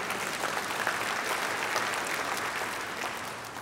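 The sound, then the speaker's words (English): An audience breaks into steady applause, a dense, crackling wash of many hands clapping at once that holds evenly for a few seconds before beginning to thin out at the end. “Yeah, I think we can applaud that.”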